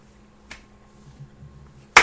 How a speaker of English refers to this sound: Or that woman that just clapped after a... Slow clap. Slow clap.